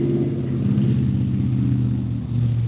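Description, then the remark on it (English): A car drives by outdoors, its engine humming steadily for a few seconds, a loud low rumble with a slight revving tone and no voices over it. “So maybe this wasn't a good idea to do this outside, because everybody I know was driving by and honking and waving.”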